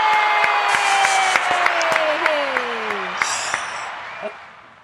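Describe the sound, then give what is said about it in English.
A crowd bursts into steady, dense applause with sharp individual claps to welcome an introduced guest. A voice whoops with a long falling cheer, and the clapping then thins and fades toward the end. “I don't think I've ever gotten an applause before.”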